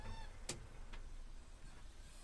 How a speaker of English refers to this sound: Another noisy bird outside. I don't recognise that call. What is that? It's either a moor. It's coming from the area where the moorhens and the hoot and the coots are, but it's making a sound that I don't recognise.